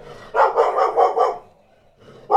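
A dog named Dharma barks loudly, a quick run of about five barks in a row, then a short pause before another bark starts.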